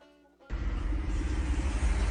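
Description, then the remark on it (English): After a brief quiet hum, a car crashes into a pole with a sudden, loud impact, followed by a sustained heavy rumble and roaring noise until the end. “he was so distracted by filming the UFO on the semi truck that he crashed into a pole.”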